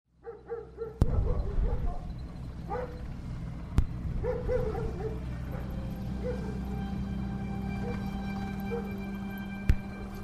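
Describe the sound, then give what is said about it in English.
A dog gives a few short barks and high, whining whimpers in the first seconds, then quiets while a steady low drone continues, broken by occasional sharp clicks. “Sergeant Stubby of the First World War, the heroic story of America's most decorated war dog.”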